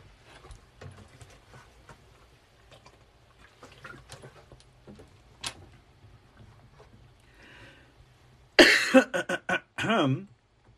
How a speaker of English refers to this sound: Ooh, pardon me. Just one moment while I cough up a lung.